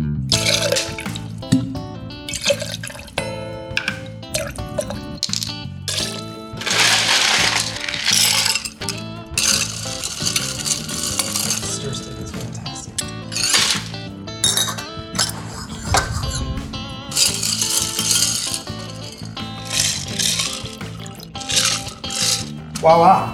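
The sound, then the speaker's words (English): A Remember the Maine cocktail being mixed: repeated bright clinks of glass and ice, metallic taps and a splash of pouring liquid, busy and fairly loud throughout, with a voice now and then in the background. “We're going to mix up a cocktail, and we'll be right back.”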